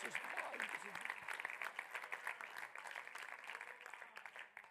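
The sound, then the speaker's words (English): An audience claps their hands to thank God, steadily for several seconds. It is a dense, bright patter of many hands, with voices calling out and cheering underneath, before it begins to thin toward the end. “Somebody ought to clap your hands and thank God.”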